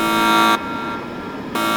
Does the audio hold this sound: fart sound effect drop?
no